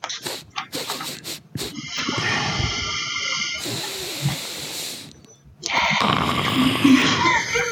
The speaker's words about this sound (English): Is that a sniff or a snort? Well, it was a sniff that's turned into a snort.